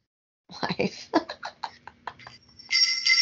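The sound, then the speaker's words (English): Bells ring brightly, building into a sustained high jingle in the last half second, right after a burst of excited voices and laughter. “She got the bells.”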